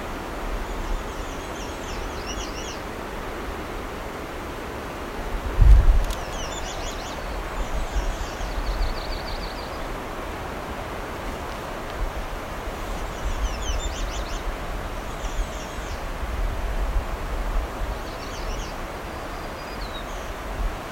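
bird, myrtle warbler song

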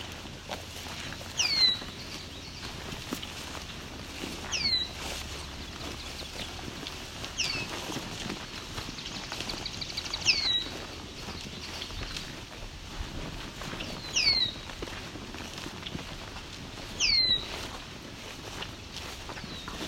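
bird, red-winged blackbird song

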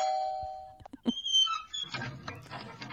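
household object, doorbell ringing

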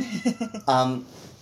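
animal, cat meowing

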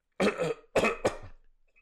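human body sound, throat clearing cough

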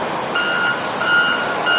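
vehicle, truck reversing warning beeps

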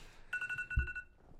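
signal or alarm, alarm going off

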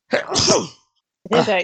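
human body sound, sneeze

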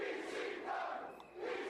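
crowd, arena crowd chanting

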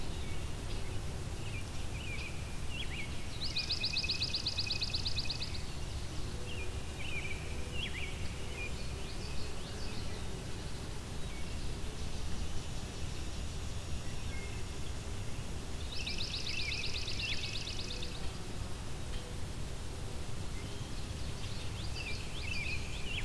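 bird, swamp sparrow song

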